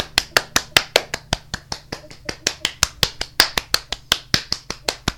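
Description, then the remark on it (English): One person claps hands in a quick, steady rhythm, around two dozen sharp, crisp claps over about five seconds, fairly loud and with no talking. “That's me clapping because this is my 25th episode, which means I am halfway through my first season.”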